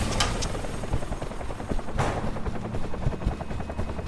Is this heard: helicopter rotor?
yes